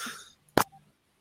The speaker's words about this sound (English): No, I had a cough because I'm, you know, I don't want to cough into the microphone.